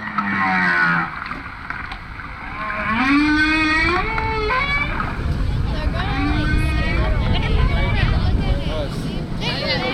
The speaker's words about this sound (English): A hydrophone the crew dropped into the water records the sounds of a lone male humpback trying to sweet-talk a female.